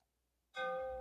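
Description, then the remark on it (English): After a brief silence, a single struck stone rings out with a sharp attack and a clear, sustained single tone that stays loud until the end. “Those were the stones with one sound.”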